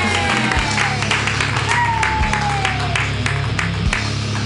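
A crowd claps steadily and densely throughout, with scattered cheers and a thin, sliding whistle rising above the applause. A low hum sits underneath the whole time.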